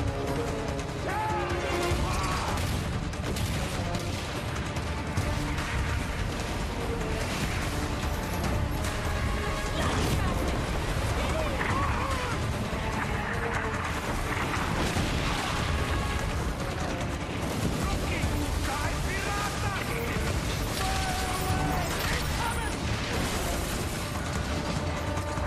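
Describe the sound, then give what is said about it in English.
Loud, dense naval cannon fire with heavy crashing and splintering as the enemy strikes first and the first ship of a squadron goes down, a continuous barrage of booms and impacts filling the whole stretch with no pause. “The enemy strikes first. The first ship goes down, breaking your formation.”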